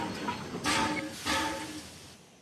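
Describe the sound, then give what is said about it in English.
A coal-fired train lurches to a halt after running out of fuel, with two loud bursts of hissing, grinding brake noise over a steady rumble that fades as it stops. “All of a sudden, the train lurched to a halt.”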